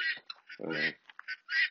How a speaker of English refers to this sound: We have a couple dogs and all sorts of guineas and turkeys, which I'm sure y'all can hear in the background.